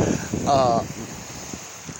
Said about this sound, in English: Boy, this water, it sounds so, I just love the sound of the ocean. It's beautiful.